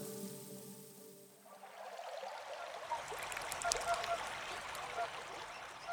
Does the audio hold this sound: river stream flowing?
yes